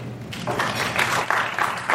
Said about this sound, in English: Well, how many people, by round of applause, have made a speech at a wedding?